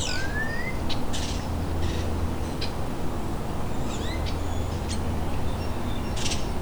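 Starlings run through a jumble of mimicked bird calls, imitating house sparrow, nuthatch, tern and osprey: rising whistles, sharp chirps and rasping squawks in quick irregular bursts, over a steady low rumble of outdoor noise.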